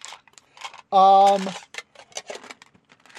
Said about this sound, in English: Blotto is rolling some hit dice to heal up.